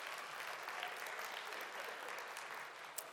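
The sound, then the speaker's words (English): A crowd applauds steadily, a dense wash of many hands clapping at an even, sustained loudness throughout, with one sharper clap standing out near the end. “I don't know that that's anything to applaud about.”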